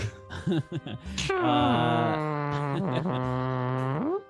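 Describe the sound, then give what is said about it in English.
A sound effect: a short burst of choppy voice-like sounds gives way to a long, loud, buzzy fart noise that holds a steady low pitch for about three seconds before bending and cutting off. “That's a fart noise.”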